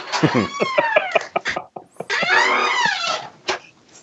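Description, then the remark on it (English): A door creaks open in two long, wavering groans, the first broken by rapid ticking clicks, the second a rising and falling high-pitched moan, ending with a sharp knock. “And with that creepy door noise, we will officially end the interview.”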